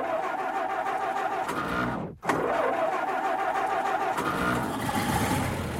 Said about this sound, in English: All right, let me fire up the engine here.